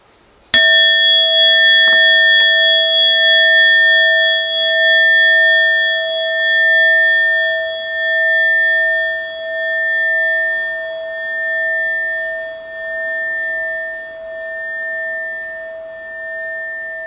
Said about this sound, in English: So we'll meditate 7 or 8 minutes here. I'll ring the bell once to start and twice when we're done.